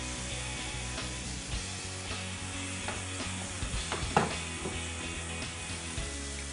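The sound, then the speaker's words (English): Steady sizzling of food searing in a hot pan to form a crust, a dense crackling hiss with occasional sharper pops and a few soft clinks, with no voices. “You want to hear that nice sizzle, that strong saute.”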